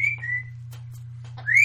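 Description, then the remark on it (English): A pet bird whistles: a clear, high tone that dips slightly, a few faint chirps, then a rising whistle at the end, all over a steady low hum. “I think the bird thought you were talking to him.”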